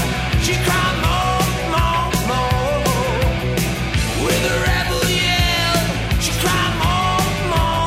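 A loud, energetic 1980s rock song from a 1983 album plays throughout, with a driving drum beat, dense electric guitars and a sung, shouting vocal riding on top.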